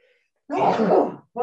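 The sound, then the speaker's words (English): A single loud sneeze bursts out suddenly, a voiced, breathy blast lasting under a second before cutting off, with near silence around it. “And bless you.”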